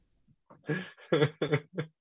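A voiced yawn, drawn out in several breathy, moaning pulses that swell and fade over about a second and a half, fairly loud against a quiet background.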